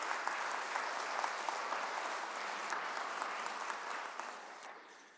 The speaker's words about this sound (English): Can you just give them a round of applause of thanks for that?